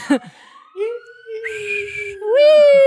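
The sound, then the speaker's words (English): The siren of an ambulance or fire truck coming down the street wails in long, steady tones that sweep upward in pitch, swelling louder toward the end as it goes by. “Sorry, there's like an ambulance going by or a fire truck.”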